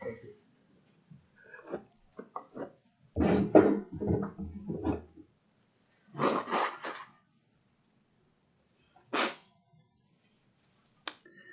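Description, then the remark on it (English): Breathy sniffs and the rustle of a tissue wiping a nose by a preacher during a sermon, in several short bursts separated by quiet pauses, with a final quick sniff near the end. “I don't want you to hear me sniffing throughout the sermon.”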